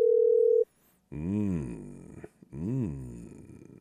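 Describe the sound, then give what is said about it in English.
A single steady electronic ringback tone from an outgoing phone call, lasting under a second, then a pause and loud, wavering voice-like sounds with no clear words. “I see the phone is ringing, and I see I don't need to mess with the phone anymore.”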